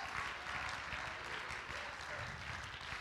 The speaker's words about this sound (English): If I've got hands, I'm going to clap those hands in magnification to the King of Kings.